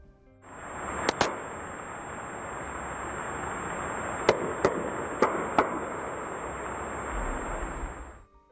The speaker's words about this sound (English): Late in day two, CNN reports that the Canadians heard banging noises at 30-minute intervals from under the ocean, and that changed everything. This is the sound that was heard.